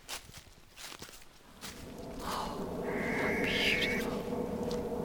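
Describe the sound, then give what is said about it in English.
Footsteps crunch over leafy ground in an irregular walking rhythm as someone walks out of woodland onto open heath, followed by a steady low rumble and a brief, harsh, drawn-out rasping screech call of a barn owl rising above it. “We'll just sneak back out of the woodland out onto the open heath and see what we can find there.”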